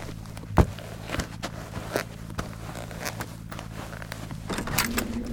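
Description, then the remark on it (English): A few soft footsteps thud at an uneven pace, followed by a brief creak and rustle as a motel room door is pulled open at night. “I'm gonna go for the door.”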